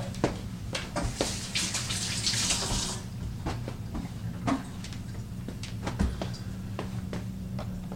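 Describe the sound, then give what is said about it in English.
Cold water runs from a tap into a measuring cup as two cups are measured out for cooking, a steady hissing stream that is loudest over the first three seconds, then settles into quieter splashing with a few clinks and knocks. Nobody speaks. “Alright, 2 cups cold water.”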